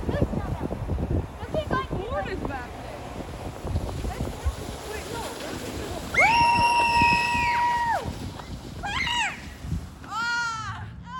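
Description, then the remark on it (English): Kids hooky bobbing behind a truck on 2 inches of snow: steady engine rumble and wind buffeting, broken by long, high-pitched shrieks and whoops, plus a few shorter squealing cries. “That was some audio of me and the kids hooky bobbing, if you know what that is, behind the truck on our 2 inches of snow.”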